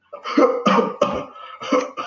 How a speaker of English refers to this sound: Coughing all your germs out in the air. Like, cover that up, too. Whatever you got to do to cough, be smart about it, man.